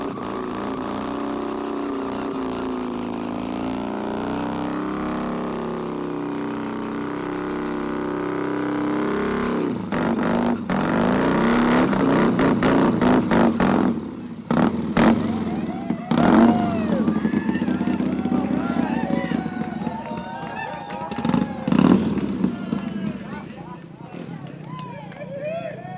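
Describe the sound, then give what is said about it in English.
Motorcycle engines drone and rev steadily, then a loud crowd erupts in cheering and shouting over the roaring bikes, with sharp bursts of noise rising and falling through the rest. “But as they're getting closer and closer, you can see the whole crowd now is cheering for them.”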